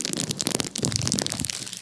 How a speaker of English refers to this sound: I'm trying to talk, and this man over here opening a bag of chips in the microphone.